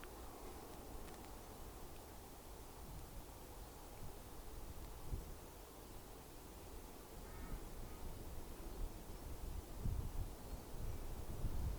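Faint birdsong from several different kinds of birds, including crow-like caws, scattered over a steady outdoor hiss of wind and rustling leaves, with no one speaking.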